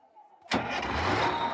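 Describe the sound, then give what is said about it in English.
After a brief quiet moment, a large bus engine suddenly roars to life and settles into a loud, steady rumble. “The bus started and Carson heard the voice go away.”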